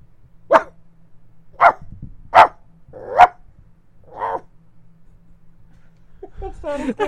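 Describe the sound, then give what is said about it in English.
A person imitates a small dog's bark with five sharp, high yips spaced about a second apart, the last one softer. Someone starts talking right at the end. “It sounds like a little tiny dog.”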